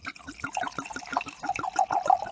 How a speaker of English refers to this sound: I'll do my wine pour.